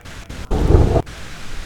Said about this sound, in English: Our thunderstorms here in Utah are not very big. Every once in a while you get a good one.